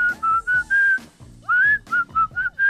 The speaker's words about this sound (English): I can whistle just about any song you give me. Just do whistle while you work.